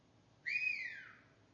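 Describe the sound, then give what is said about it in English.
A single whistled note in a church service, clear and fairly high, rising briefly then gliding slowly downward before fading out after about a second, with no talking over it. “Actually, no, it needs to be a better whistle than that.”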